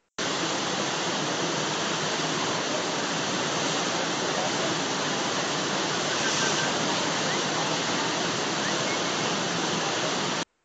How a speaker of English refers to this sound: It looks pretty awesome where there are artificial waves being created and you can surf on them.